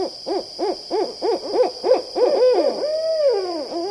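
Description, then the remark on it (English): Barred owl hooting in a steady rhythmic series, about ten arched hoots in quick succession, ending in a longer drawn-out, descending call; loud, with no talking. “These are the rhythmic hoots of a barred owl, a large, stocky bird of forests, swamps, and suburban parks.”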